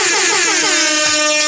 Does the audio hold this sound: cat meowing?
no